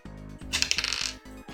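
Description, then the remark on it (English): Dice rattle and clatter across a hard table in a quick burst of bright, hard clicks lasting about half a second, then settle, over a steady low background hum with no voices; the roll is 1d10 plus 2 for revolver damage during a game, and it comes up a 2. “It's 1d10 plus 2. That's the same. All right, so roll that.”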